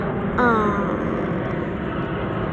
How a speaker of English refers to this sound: Blah, blah, plane, blah, blah. Plane's almost over my head, okay.